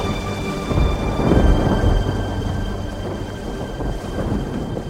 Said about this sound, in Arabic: فوقف يسوع وأمر الريح والأمواج فهدأت العاصفة.